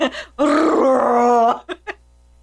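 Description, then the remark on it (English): A voice imitates a walrus call: a quick grunt, then a loud, sustained bellowing groan lasting about a second, followed by two short huffing grunts, all alone. “So if I was to walk up, you know, to a walrus, I'd...”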